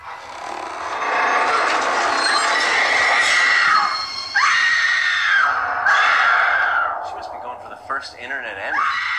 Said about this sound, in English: Same scream over and over.